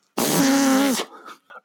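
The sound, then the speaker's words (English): A loud, buzzy fart noise blown with the mouth, lasting nearly a second, followed by a few softer sputtering bits, with no talking. “Could just be fart sounds, and I would be totally fine.”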